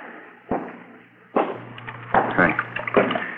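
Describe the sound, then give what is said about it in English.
Water runs from a tap in a steady rush, broken by several louder splashing bursts as something passes under the stream, over a faint low hum. “Turn on the water tap, huh?”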